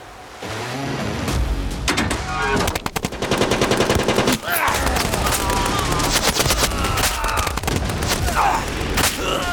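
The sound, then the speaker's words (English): Loud, sustained German machine gun and rifle fire on Canadian infantry landing on a beach from landing craft at 07:49, rapid bursts of sharp cracks overlapping in a dense, chaotic barrage that barely lets up across the whole stretch. “The Germans opened up with everything they had left.”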